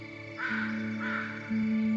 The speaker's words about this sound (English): Notice if there's some sounds in the forest that you judge as being better or more pleasing than others. I like that bird. I don't like that bird.